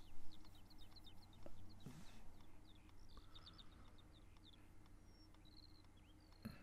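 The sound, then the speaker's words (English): Birds sing and chirp in quick repeated phrases throughout, layered over a steady low rumble of background noise, with no one speaking. “You know, you've had the storm, now you've got birds singing.”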